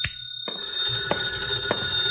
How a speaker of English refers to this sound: My phone was ringing when I unlocked the door.